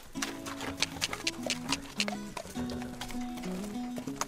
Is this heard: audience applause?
no